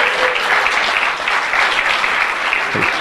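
Steady, loud applause from an audience, a dense rush of many hands clapping at once that holds at full strength throughout with no voices breaking through.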